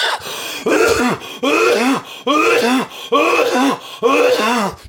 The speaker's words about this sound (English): Well, that's some performative coughing, dude. That's an oh shit, dude.